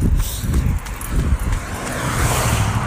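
A car approaches along a country road, its tire and engine rumble swelling steadily louder and brighter over a few seconds, with wind-like noise across the open outdoors.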